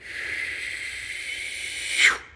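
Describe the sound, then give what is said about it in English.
A slow, steady breath blown out through pursed lips in a controlled breathing exercise, like breathing out through a straw after breathing in through the nose and holding: a soft airy hiss lasting about two seconds that swells slightly at the end before cutting off. No talking. “So breathing in through the nose, hold it, and slowly breathe out through the mouth like you're breathing through a straw.”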